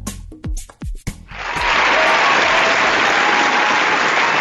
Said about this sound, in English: Round of applause. Wow, how nice is that?